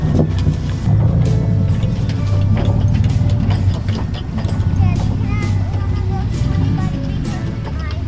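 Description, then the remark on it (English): A vehicle drives away down the road with a steady, loud low engine rumble and road noise throughout, while indistinct voices murmur faintly over it. “That is a huge chapter of our life, driving away down the road.”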